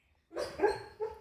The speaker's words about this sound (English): Is she having a dream? Oh, she's dreaming? The dog dreaming. The dog dreaming. That's funny.